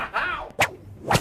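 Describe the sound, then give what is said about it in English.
A whooshing swing leads into two sharp, loud whip cracks about half a second apart, crisp, with no voices. “This is my first role as a superhero woman with a whip, at least.”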